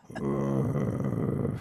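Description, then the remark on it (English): A man's voice imitates a dog's growl, a low, rough, sustained snarl held for over a second without any words. “I'm about to attack. My dog Growly about to attack.”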